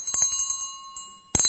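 A small butler's service bell is struck several times in quick succession to wake someone, its bright metallic ring lingering and fading before one more loud ding sounds at the end. No voices.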